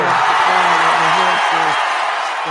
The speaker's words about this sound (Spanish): ¡Un aplauso!